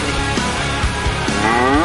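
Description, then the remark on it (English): A cow moos loudly, one long drawn-out bellow lasting about two seconds that rises in pitch toward the end, over a dense, noisy background. “Sorry, I love the cow.”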